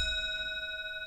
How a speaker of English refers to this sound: Oh, you're lucky it's 1 o'clock, because that grandfather clock chimes once for every single hour of the day. It's 1 o'clock right now, but if it's 11 p.m., that's 11 dongs, and that goes on forever.